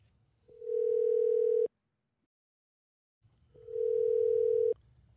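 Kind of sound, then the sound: signal or alarm, telephone dial tone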